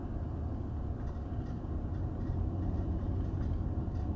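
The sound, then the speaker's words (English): A tractor trailer barrels down the road with a loud, steady low rumble and roar that holds constant throughout, with no voices present. “Here comes a tractor trailer barreling down the fucking road.”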